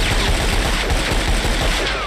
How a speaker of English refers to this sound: Just relentless, ongoing, massive cannon-like gunfire as Yosemite Sam literally shoots the ball with the guns he has.